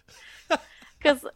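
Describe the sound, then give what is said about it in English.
Alfie, an adopted rescue dog, makes soft, snuffly noises: a breathy, airy hiss broken by two brief, louder nasal snorts with a slightly whiny tone, over about a second and a half. “Because I'd adopted Alfie, who's sitting next to me right now making little cute snuffly noises.”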